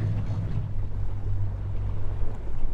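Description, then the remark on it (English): A boat's motor rumbles steadily, a low droning hum layered with wind buffeting and water washing around the hull as it comes in to land on a wet, green tundra beach. No one speaks. “lands the boat and we walk around a little bit on the tundra.”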